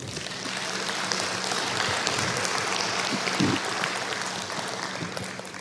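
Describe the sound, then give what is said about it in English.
A crowd at a presentation applauds steadily in answer to a speaker's question, by those who are or were on a Social Security benefit; a dense wash of many hands clapping at a fairly even loudness for several seconds, with a few brief murmurs and thumps mixed in. “How many of you either are current, by applause, how many of you are or ever were on some sort of Social Security benefit?”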